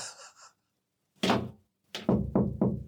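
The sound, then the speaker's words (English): Loud knocking on a wooden door: a single heavy thump, a short pause, then four quick raps in a row. A faint breathy sound comes just before. “I dare say there'll be a knock at my door any time now.”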